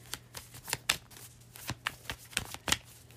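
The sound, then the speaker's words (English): Tarot cards being shuffled, a quick series of crisp riffling snaps and soft slides in an irregular rhythm, with no voices and a faint steady hum underneath. “Let's just clarify these few cards.”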